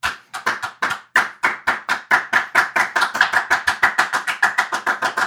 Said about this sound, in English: I'm hoping a crowd somewhere will join me. I'm gonna slow clap this into existence. You're alone. You're alone. I'm sorry. I'm slow clapping this into existence.